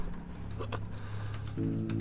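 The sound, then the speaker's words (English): Quick, irregular keystrokes tapping on a computer keyboard as notes are made, fairly soft, over a low steady hum, with no one speaking. “Sorry, I'm making notes here real quick.”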